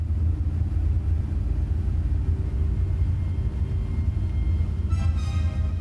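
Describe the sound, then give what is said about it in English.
Car park ambience: a steady, deep rumble of engines and traffic noise fills the space, with a brief tonal whine rising near the end. No voices. “Finally, car park number three.”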